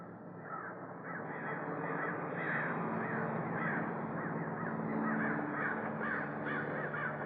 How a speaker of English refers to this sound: Crows. We have a lot of them out here. They like to nest in those eucalyptus trees over there. Nice sound, isn't it?